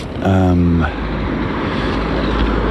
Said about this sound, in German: Es hat doch noch viel Verkehr. Wir hören es immer wieder.